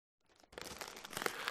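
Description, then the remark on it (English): The first corner of the wrapping paper on a gift, a mini fridge, being torn and crinkled: a soft rustle, then a sustained, bright, crackly rip that grows slightly louder over about a second, with no voices. “Well, as I tore the first corner of the wrapping paper, I felt a cold shiver.”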